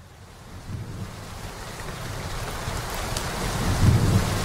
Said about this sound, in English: You may have heard that it's been raining in Southern California. Across the state, we're seeing mudslides, rivers overflowing, and flooding.